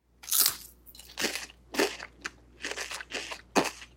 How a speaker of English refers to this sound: Let's start with the classic potato chip. So, Oliver, how about you take a bite, listen to the noise it makes